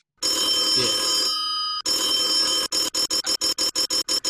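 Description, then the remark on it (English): A loud telephone bell rings continuously, briefly changes tone, then breaks into a rapid series of short, evenly spaced rings. No one speaks. “Oh, fucking hell, someone wants us on the phone.”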